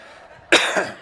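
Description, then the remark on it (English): A single sharp cough bursts out halfway through after near silence, followed by a smaller second hack that trails off, fairly loud with no talking, from a person getting over about two weeks of illness. “So if you'll just excuse any of my coughs, sniffles, right, or any of that kind of stuff, I just want you to know I'm not contagious.”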